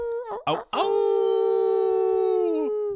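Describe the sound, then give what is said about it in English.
After a few short yelping bursts, a person lets out a long, steady dog-like howl that holds loud for about two seconds before cutting off, imitating a dog. “To shout out to the doghouse. Woohoo! Roof, woof, where my woof, boy's woof.”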